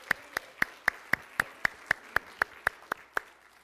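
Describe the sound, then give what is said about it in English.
A church audience claps for joy together in a steady, even rhythm, about fourteen sharp, crisp claps at roughly four per second, with no voices. “Somebody clap for joy.”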